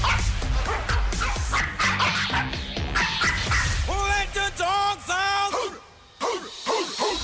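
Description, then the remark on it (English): A dog barks repeatedly and loudly, a run of sharp woofs followed by higher, drawn-out yelping barks in quick succession, with a brief pause before a few more. “If you know what kind of dog is woofing and barking and making, what breed of dog is making this bark, score yourself a grand prize.”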